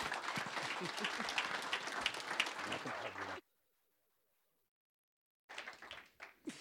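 Loud, dense audience applause welcoming a pastor, with many hands clapping at once, breaking off into silence for about two seconds before a quieter burst of clapping returns.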